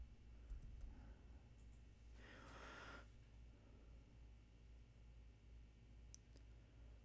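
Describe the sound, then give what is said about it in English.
A few faint, sparse computer mouse clicks come seconds apart while someone double-checks Juan Soto's age, with a brief soft breathy rustle between them and no talking. “Sorry, you're going to hear mouse clicking because I want to double-check that Juan is that young.”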